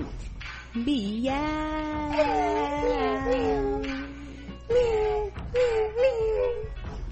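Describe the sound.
A voice imitates a cat meowing, drawing out a long wavering meow and then a few shorter ones, fairly loud, with no other sounds around it.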